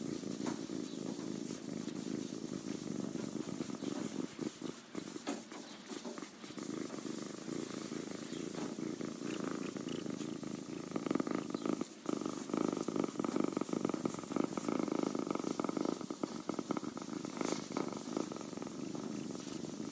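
A male baby kitten purrs, a steady, continuous rumbling with a soft rhythmic flutter that carries on for the full twenty seconds without any talking.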